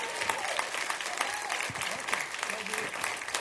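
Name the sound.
audience applauding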